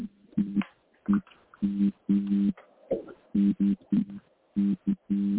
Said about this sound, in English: It's terrible. Yeah. Annoying. Yeah, very, very annoying. We tried, like, last time, I was all in college, but it was still there, boo. It sounds like a transformer arcing on the phone is what it sounds like. An electric transformer.